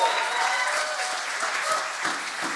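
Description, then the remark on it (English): An audience in a church claps steadily, giving the Lord a round of applause; the applause is a dense, even patter of many hands that holds at a constant level throughout, with faint scattered voices mixed in. “If you're part of that church, give the Lord a round of applause now.”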